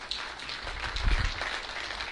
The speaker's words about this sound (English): You can clap. That's okay. Go ahead and clap.